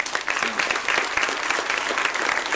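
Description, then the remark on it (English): Steady applause from a church audience welcoming a new candidate for baptism, many hands clapping together in a dense, even patter that holds at full strength for a few seconds without a break. “And let's give him some applause.”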